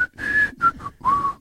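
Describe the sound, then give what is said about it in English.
A person whistles a short tune of several quick notes, clear, with brief breathy gaps between phrases and no talking. “The best and the worst part is the whistle.”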